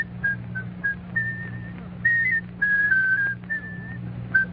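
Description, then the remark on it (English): A whistler whistles a short tune on a quiz program, in clear, sustained notes and quick phrases that rise and fall, with a steady low hum underneath and no talking. “Oh, now, can you whistle it?”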